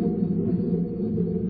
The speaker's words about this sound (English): Still thundering.